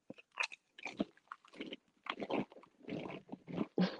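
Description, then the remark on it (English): Loud crunching of a crispy onion-flavored wavy potato chip being bitten and chewed, with a series of sharp, irregular crackling bursts over a few seconds and no talking. “It's the crunch crunch for me.”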